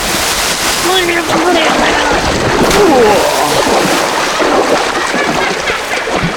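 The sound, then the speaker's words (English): Steady splashing and sloshing of people wading through the Urea River, continuous and fairly loud for the whole stretch, with faint voice-like sounds mixed in underneath. “Dickus and Spikus escape the clutch of Malthus Brindle as our heroes traverse the Urea River away from the Shiler Balls.”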